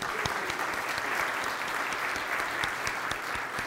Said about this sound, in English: Give God a hand clap.